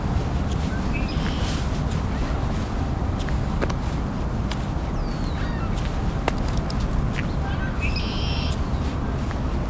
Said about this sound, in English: Back at the red-winged blackbird again, and a few gulls flying over. So ring-billed gulls. Oh, and there's a herring gull too.